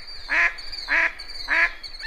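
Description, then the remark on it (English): A duck quacks three times in a steady, evenly spaced rhythm on its wintering grounds, where ducks select mates. Each call is loud and nasal, over a faint background of other waterfowl calls. “To understand why ducks have such bizarre genitals, we're going to take you to their wintering grounds, where they select mates each breeding season.”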